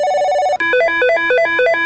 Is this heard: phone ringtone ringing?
yes